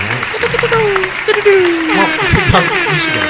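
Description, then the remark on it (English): A person vocally imitates applause as their best attempt, producing a few seconds of breathy, hissing crowd-like noise mixed with whooping, cheer-like vocal tones, fairly loud. “Applause. Pretty good.”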